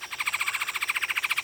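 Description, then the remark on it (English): A red-headed woodpecker's shrill, hoarse "tachur" call, its most common call: a steady, high-pitched buzzy note made of rapid pulses, sounding alone and fairly loud for about a second and a half. “The most common call is a shrill, hoarse "tachur" call.”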